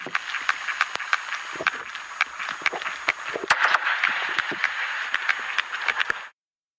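Sharp, loud sperm whale gunshot clicks, used by sperm whales on their prey, crack out irregularly over a constant hissing underwater background, with one especially strong burst midway. No one speaks, and the sound stops abruptly near the end.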